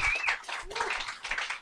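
A show audience applauds a performer, a dense, steady wash of many hands clapping that holds at a fairly even loudness, with a brief whoop or cheer rising out of it.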